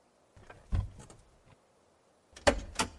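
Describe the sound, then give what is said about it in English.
A truck door unlatches with a clunk and some rattling as a person climbs out of the truck, pulled over at the side of an interstate on-ramp, then after a short pause is pushed shut with a louder, solid thump. No one speaks. “I climbed out of the truck.”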